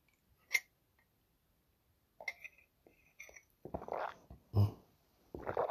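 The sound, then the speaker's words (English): Throaty swallowing sounds: a sharp click, then a run of soft, irregular gulps and wet mouth noises, with one heavier gulp near the end. No one speaks. “Like the sound of my swallowing.”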